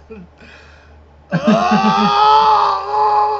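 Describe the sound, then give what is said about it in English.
A loud, sustained human scream bursts in after a brief quiet murmur, holding strong and steady for about two seconds, voiced as a deliberate demonstration. “Just have a big old scream when you wake up.”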